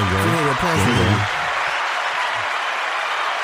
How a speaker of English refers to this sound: Applause for Haiti, man.